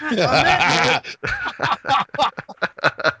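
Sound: donkey braying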